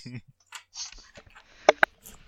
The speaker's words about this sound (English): He tries to shuffle his cards, and it doesn't go great, but he manages to shuffle them into a pile. Nice sound effect.